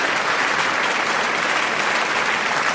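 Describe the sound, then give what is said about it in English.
Sustained applause from an audience, a dense, steady wash of many hands clapping at once, loud and continuous throughout with no pauses and no voices standing out. “As soon as we yeah, you gotta stop clapping.”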